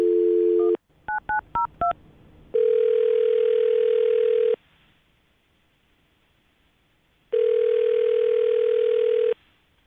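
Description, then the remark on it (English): A steady telephone dial tone as Jubal of the radio show Brook and Jubal in the Morning calls a woman, then a quick burst of five keypad beeps, followed by two long, loud ringback tones separated by a pause of near silence. No voices are heard. “Are you about ready to give her a call? Let's do it. Okay, here we go.”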